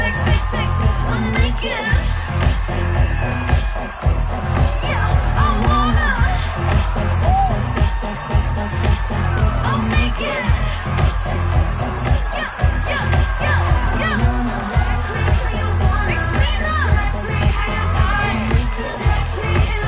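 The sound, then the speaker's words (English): A live pop song plays loudly with a steady, pulsing beat and heavy bass, its lyrics largely the word "sex" repeated over and over and shouted in the refrain, while a crowd cheers and shouts continuously throughout the performance. “Yes, the song largely consists of the word sex repeated over and over again.”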